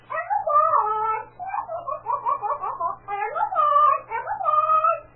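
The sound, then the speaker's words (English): A parrot chatters and squawks in a shrill, warbling run of voice-like syllables for several seconds, fairly loud over a faint low hum. “No, no, I mean, did you get what that bird said?”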